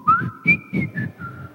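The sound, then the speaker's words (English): A voice mumbles in short syllable-like bursts while a thin, steady whistle rides over it, imitating a whistle talker, someone whose speech comes out with a whistle. Moderately loud, about five rhythmic pulses. “Do you know any whistle talkers? Just kind of whistle with them.”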